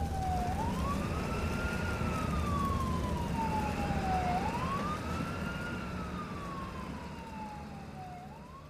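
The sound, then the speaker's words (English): Distant emergency sirens approach, wailing in slow rising and falling sweeps, about two full cycles, over a steady low rumble of traffic, fading slightly toward the end. “I began to hear sirens coming in the distance and passed out from some mixture of pain and fear.”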